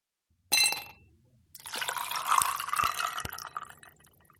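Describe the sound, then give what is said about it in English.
A short bright clink, then a steady stream of liquid poured into a glass for about two seconds, fairly loud, tapering off at the end. No one speaks. “Gentlemen, let's pour ourselves a conversation.”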